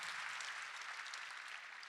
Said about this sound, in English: Amen. Somebody clap and thank God. Come on, we're going to learn how to pray.